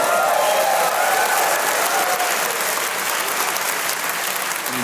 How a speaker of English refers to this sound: That was some of the most premium content ever delivered, and you guys owe yourself a round of applause for it.